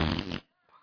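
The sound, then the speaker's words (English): A voice imitates a fart with one loud, buzzy, sputtering raspberry lasting under half a second, then it cuts off into near silence with a faint trailing murmur. “He farts.”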